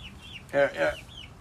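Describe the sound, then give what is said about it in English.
A chicken gives two quick, fairly loud clucks, with faint higher chirps of other birds in the background. “A boy and his chickens.”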